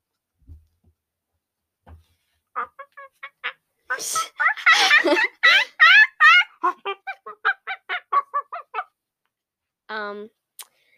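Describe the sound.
A person imitates a clucking chicken, starting with a few soft clicks, then a loud burst of rapid, choppy bawk-like squawks trailing into a quick run of short clucks, ending with one final squawk.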